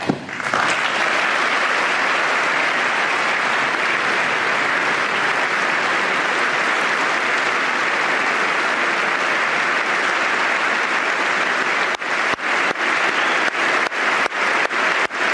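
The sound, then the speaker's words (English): Sustained applause from a large audience during a speech by Trump about fighting terrorism and securing the nation fills the whole stretch, a dense, steady clatter of clapping at high volume. Toward the end, a few sharp individual claps stand out as it thins. “This started to come in a good time in his speech, too, because at the beginning, his cadence was a little off with the applause.”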